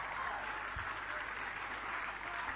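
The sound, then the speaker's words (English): An audience at a conference applauds for Dr. Daddy Ken in a dense, steady wash of clapping that carries evenly from start to finish at a moderate level with no pauses. “Clap for him, oh.”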